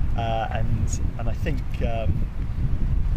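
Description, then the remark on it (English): Steady wind buffets outdoors, a constant low rumble that never lets up, while a person talks over it in short bursts. “It's too windy to flick through.”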